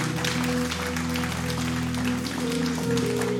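An audience applauds the many people who raised their hand that day, in a steady, dense wash of clapping that lasts throughout, with sustained keyboard chords humming underneath. No one speaks.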